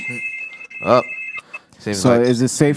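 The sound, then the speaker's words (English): A steady, high electronic doorbell tone rings for about a second and a half, fairly loud, while people talk over and after it. “Or who the fuck is ringing my bell?”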